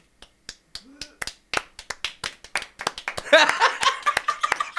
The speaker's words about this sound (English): Got a whole applause.